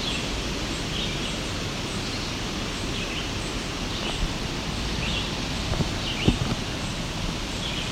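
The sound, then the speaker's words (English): A red-eyed vireo sings faintly in the background, short whistled phrases repeated with brief pauses, over a steady wash of rustling outdoor noise and a few soft knocks. “There's a red-eyed vireo singing in the background here.”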